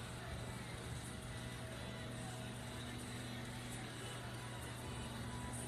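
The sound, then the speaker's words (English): A steady, droning rumble of race car engines at low speed as the field rolls off behind the pace car, rolling along together in a continuous hum with constant loudness and no distinct passes. “They're gonna roll off.”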